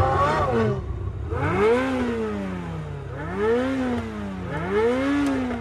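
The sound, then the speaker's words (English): The engine of a newly finished Supra sports car revs up and down in three or four surging sweeps, its pitch climbing and falling repeatedly, loud with a steady low rumble underneath. “So in this minute, Brian and Dom get into the newly finished Supra as Leon, Jesse, and Letty look on.”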